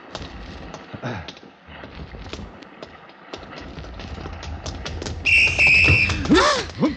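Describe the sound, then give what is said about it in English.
A shrill whistle is blown in one sustained blast near the end by a man doing wind sprints around a ship's deck, cutting through a busy background of clattering footsteps and scattered taps. “I blew my whistle, but I guess you didn't hear it in time.”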